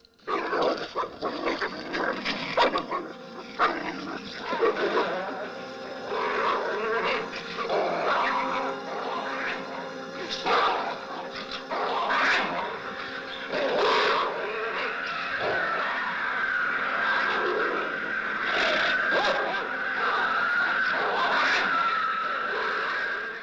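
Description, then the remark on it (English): Dogs fighting in a film's sound design, a dense, continuous mix of snarls, growls and yelps with sharp bursts throughout, joined in the second half by an eerie, sustained whining tone. No one speaks. “So just dogs fighting and just some ethereal spirit like talking between the two of them.”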